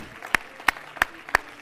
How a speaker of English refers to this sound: I feel a freedom and a liberty in the Holy Ghost here this morning. I like what I feel. Clap your hands one more time to Jesus.